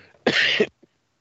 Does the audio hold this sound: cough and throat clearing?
yes